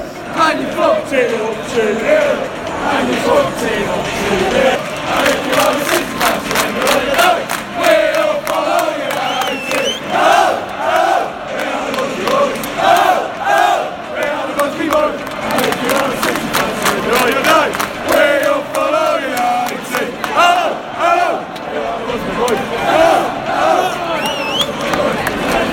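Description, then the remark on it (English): A large crowd of football fans cheers and chants loudly and continuously, with rhythmic bursts of clapping around the middle and a dense roar of many voices throughout. “As you can hear, everybody's absolutely buzzing.”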